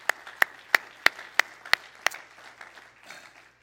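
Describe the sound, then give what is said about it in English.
An audience claps hands to the Lord in a steady, even beat, about seven sharp loud claps, before the rhythm breaks up into softer, scattered clapping that fades out. “Everybody clap your hands to the Lord tonight.”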